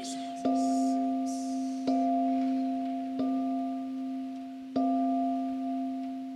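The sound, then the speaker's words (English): A deep clock bell striking twelve tolls slowly and steadily, four resonant strikes about a second and a half apart, each ringing hum overlapping the next, with no voices. “The bell struck 12.”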